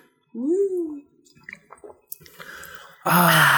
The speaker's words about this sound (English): I'll just take a huge sip of my mixed drink. I'll count as a shot. It's almost like a shot.